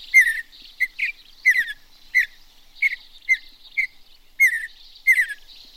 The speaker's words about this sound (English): The mountain bluebird now.